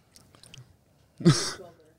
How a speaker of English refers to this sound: Oh. All right. She's chewing again. Cookie two. All right. Very contemplative here. Very deliberate. Lots of chews.